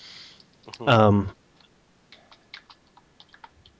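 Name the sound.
keyboard typing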